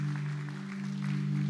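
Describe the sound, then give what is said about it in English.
An audience in a church claps steadily throughout, a dense patter of many hands, with a constant low electrical hum beneath it and no one speaking. “Let's give him a round of applause for Kathy.”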